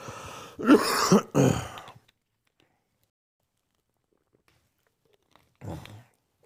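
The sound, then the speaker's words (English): Harsh throat clearing and a couple of rough coughs in a quick burst, then near silence before one more short cough near the end. “I'm starting to have a lockup here. I don't know how long I'm going to last. Let me get a cough drop, folks.”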